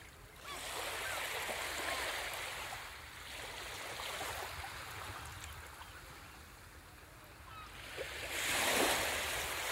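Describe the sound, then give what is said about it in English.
Steady rushing ocean water fills the scene as waves break on a beach in broad surges, with a louder surge near the end. No voices, just continuous surf noise. “We're here on this beach, right by this ocean.”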